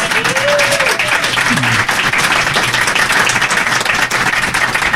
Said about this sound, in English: Thank you very much. May I ask for a round of applause for the panel?